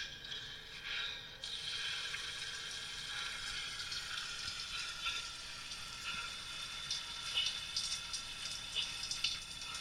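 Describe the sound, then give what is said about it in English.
Water pours out of a pump system that turns off after a while, in a steady, continuous hiss and rush, even in level for the whole stretch, with faint clicks and no voices. “Wasted all that water.”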